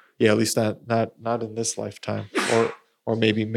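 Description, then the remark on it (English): A single sharp sneeze bursts out partway through, set among steady conversational speech from a person talking before and after it. “Bless you. Sorry, hopefully that wasn't COVID.”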